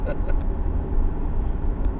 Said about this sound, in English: Bus. Come on, bus. Yes. Thank you for taking our kids to school, but Jesus Christ. You look empty.